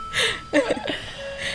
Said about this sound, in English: There's the clock again. Wow. That's our time to go. Time's up.